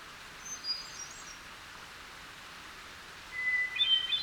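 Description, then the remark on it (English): A hermit thrush, perched on a low limb in a hemlock tree, sings two fluty, high phrases, one early and one near the end, over a steady background hiss of rushing water from a small waterfall. No one speaks. “A hermit thrush singing its heart out.”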